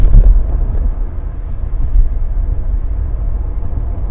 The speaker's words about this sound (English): And yeah, here's a truck coming south. It's just totally pulling behind me.